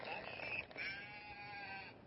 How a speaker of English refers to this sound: Isn't this fun? Like you put it to a particular animal. Let's go ahead and let's find the sheep. There it is. That's her favorite. And then you pull this down and let's see if you can hear it.